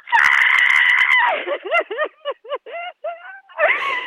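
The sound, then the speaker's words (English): A person who has just won £31,000 screams in celebration, with a neighbour in the street shouting too: a loud, high-pitched excited scream held for about a second, then a rapid run of short, sharp yelps and whoops, ending in another shrill cry. “She's shouting too.”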